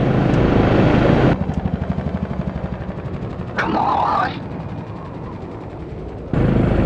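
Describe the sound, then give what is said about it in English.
Improvised helicopter blades welded onto a sail shaft spin with a rapid, steady low chopping pulse as a craft tries to helicopter up out of Venus's atmosphere toward 30 kilometers, framed by bursts of loud rushing noise, while a voice briefly shouts over the whirring. “I'm gonna try helicoptering above the troposphere, about 30 kilometers up, before lighting the candle.”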